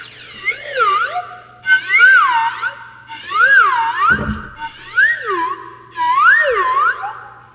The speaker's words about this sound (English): That is a new member of the Todd Glass Show. It's called Mr. Happy, and this is a slide whistle to George Carlin. We do is real. It's not a sound effect.